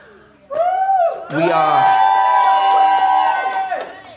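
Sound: audience shouting and cheering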